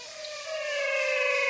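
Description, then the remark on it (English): A swamp chorus of frogs in the Pantanal floodplain merges into a steady, droning tonal hum with layered overtones, swelling gradually louder over its length with no voices. “I recorded these frogs in the Pantanal.”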